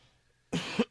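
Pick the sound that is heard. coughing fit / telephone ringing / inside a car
coughing fit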